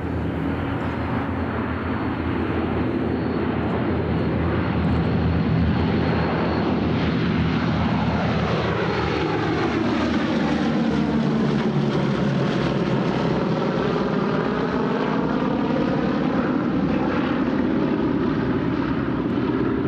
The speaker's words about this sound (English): Design was to give the airplane so much firepower that it could defend itself on its way to and back from bombing raids without fighter escorts. The B-17 was a four-engine heavy bomber that was developed by Boeing.